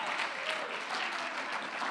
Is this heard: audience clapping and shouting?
yes